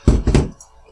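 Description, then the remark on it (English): A door swings shut with two heavy, low thuds in quick succession, the second slightly longer, then a faint rattle fades into quiet. “We're going to close the door.”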